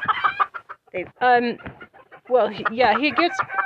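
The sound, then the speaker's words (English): Several fighting roosters cluck and squawk in loud, overlapping bursts, with a strained crowing call rising partway through, all busy without pause. “He's the smallest, so you know, he was in there for a while with Raphael, but they, you know, they were clashing, and he comes out here and he just gets wiped out by all these roosters, you know.”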